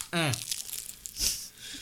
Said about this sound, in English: Bronx Pizza off of... You're going to start hearing chewing. We're doing some ASMR.